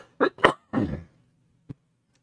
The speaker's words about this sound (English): My apologies. Hold on. Man, I am a mess. I cannot stop coughing. Sorry about that.